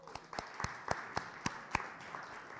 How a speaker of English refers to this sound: All right. Thank you all. Give him a hand.